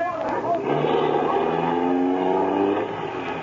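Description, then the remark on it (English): A getaway car's engine roars loudly as it speeds away, its droning pitch climbing steadily while it accelerates hard for several seconds before easing off slightly. “Can't you get no more speed out of this car, fella?”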